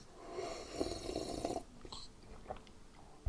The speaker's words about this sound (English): I'm just going to enjoy my coffee and sip angrily at you. Yes, it's a coffee sip. It's a giant sip. That was awful.